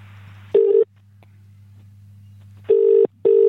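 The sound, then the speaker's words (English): An outgoing call's ringing tone to the Downing Street switchboard heard down the line: a short burst, a two-second pause, then a double ring-ring pair, over a faint steady line hum. Nobody speaks. “Okay, here we're ringing.”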